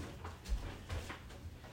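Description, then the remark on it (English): A glass studio door slides and shuts with a couple of soft, muffled thumps as a puppy is put out of the studio, followed by a faint rattle as it settles; no voices. “At least it's a glass door so she can see me until I finish this episode.”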